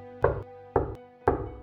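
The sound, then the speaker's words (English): Three loud, heavy knocks on the front door of a house around 9 p.m., evenly spaced about half a second apart, resonant, with nothing else heard between them. “Sometime around 9 p.m., there was a loud knock on the front door.”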